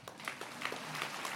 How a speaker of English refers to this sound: Applause sign.